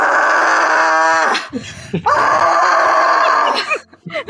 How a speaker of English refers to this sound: and they're just screaming in the background.